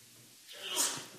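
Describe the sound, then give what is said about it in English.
A single sneeze, fairly faint: a breathy intake swells into a sharp, hissy burst that quickly fades, with no talking around it. “Bless you.”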